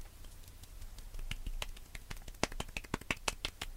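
Soft, quick finger taps patter irregularly as quiet applause for a new editor, starting sparse and growing denser, each a light crisp click over faint background hiss.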